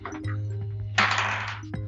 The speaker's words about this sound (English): Roll a 12-sided dice for me, buddy.